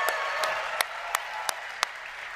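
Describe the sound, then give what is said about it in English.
An audience at an event breaks into a round of applause for the people who worked on the event, a steady wash of many hands clapping with a few sharper, louder claps popping out at a roughly even beat. No one speaks. “So let's give everyone a round of applause that's been working here, killing themselves for this event.”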